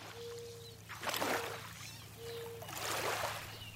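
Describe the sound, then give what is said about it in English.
Moving water of the Housatonic River swells in two rushing surges, like water churning past, over a steady low hum and a faint thin tone, with no voices. “You can hear more of Anaya Lockwood's sound map of the Housatonic River”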